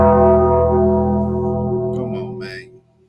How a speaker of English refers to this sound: I apologize, Bob, man. Ring the bell for Bob.